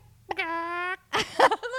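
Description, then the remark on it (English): A person imitates a chicken, starting with a drawn-out nasal squawk and then a quick run of short, choppy clucks. “But I can do a chicken.”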